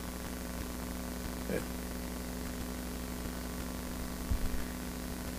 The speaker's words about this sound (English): I don't know what all that humming is.